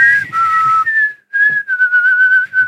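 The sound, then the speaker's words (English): Someone whistles a slow, lonesome western-style melody into a microphone, holding long clear notes that glide between pitches, with a brief pause midway and no other sounds. “It's a fucking lonely whistle over here.”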